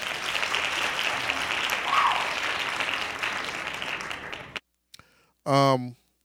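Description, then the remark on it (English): A burst of dense, steady hand clapping like an applause sound effect runs for about four seconds, then cuts off abruptly, followed by a short vocal exclamation. “Hand claps to that again, one more time.”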